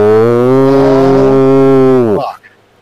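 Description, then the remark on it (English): A single long, loud cow moo, deep and steady for about two seconds before dropping off at the end, with nothing else around it. “We've got cows.”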